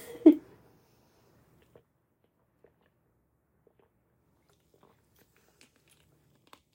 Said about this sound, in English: But I'm gonna take actually a sip, and you guys can be like, okay.